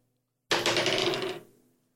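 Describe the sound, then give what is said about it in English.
A sudden burst of hard, clattering rattles as dice are shaken and tumble across a surface during a tabletop role-playing game, lasting about a second before trailing off into silence. Fairly loud, with no voices. “Can you not play with your dice, please?”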